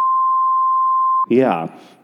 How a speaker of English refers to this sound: We should redact that because of the stories that we're about to tell. That's okay. We'll beep it out. Yeah. We'll beep it out when you say it.